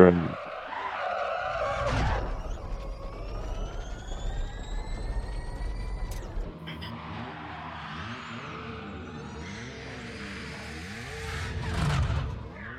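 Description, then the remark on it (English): A rally-style car resembling an Ur Quattro revs hard, its engine climbing steadily in pitch through a gear, then gives way to gritty skidding and tire noise as the car slides along, loud. “Yeah, this whole video is like, we have Ur Quattro at home.”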